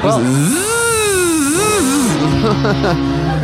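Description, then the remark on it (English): A voice imitates a Prius car starting for a pretend Uber ride, a buzzy, strained vocal drone that rises sharply in pitch, wavers and dips, then settles into a lower, sputtering rumble for about three seconds. “You didn't hear it start. You just make the noises with your mouth.”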